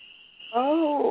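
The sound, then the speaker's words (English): A steady, shrill, high-pitched chorus of spring peeper frogs calls outdoors at night, ringing out in the background. Partway through, a louder voice rises over it and briefly dominates the frog calls. “Okay, yes, it is the frogs, it's the peepers. They're going to be going all night.”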